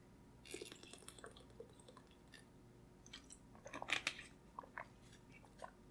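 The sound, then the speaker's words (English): Someone drinks water with small wet sips, swallows and clicky mouth sounds scattered over a few seconds against a quiet hum. “Water.”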